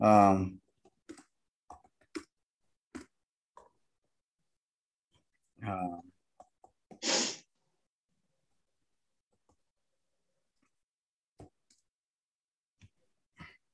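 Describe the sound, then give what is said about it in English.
Sparse, irregular clicks of someone typing on a keyboard to look something up, fairly quiet, broken up by a few short murmured vocal sounds and a breathy exhale. “I hate this when this happens, when you're typing in somewhere and it says, why can't Brian's parents, and it says, get a divorce.”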